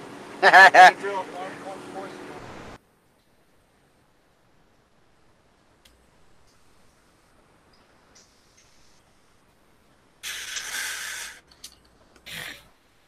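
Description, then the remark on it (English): A brief voiced sound and rough noise, then a long silence before two raspy, breathy snores from a sedated man: one drawn-out and one short, moderately loud. “Sounds like he was snoring.”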